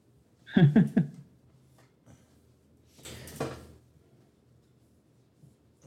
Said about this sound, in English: No, I'm trying to adjust my chair here. And an old pair of shoes was in the way, so I had to move the shoe before we could keep going here.